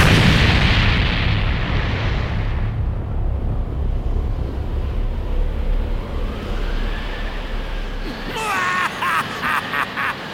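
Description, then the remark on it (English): A loud explosion, as a man blows himself up, bursts out with a harsh roar, then fades into a long, heavy rumble that drags on for several seconds before music begins. “blew himself up! What an idiot!”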